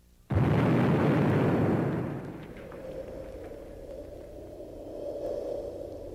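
A nuclear explosion erupts in one sudden, massive blast that roars loudly for about two seconds, then settles into a long, low, droning rumble with a steady hum.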